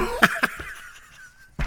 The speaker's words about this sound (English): Now, I'm going to try and get through these without coughing.